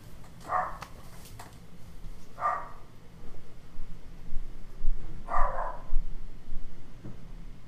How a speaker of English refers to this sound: dogs, why are you barking?